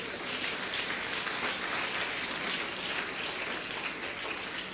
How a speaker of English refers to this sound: Why don't you give the Lord a wonderful clap offering?